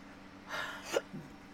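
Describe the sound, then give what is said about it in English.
A breathy intake of air, then a single sharp, abrupt hiccup with a clipped voiced catch, and a faint low after-sound. No talking. “I got hiccups.”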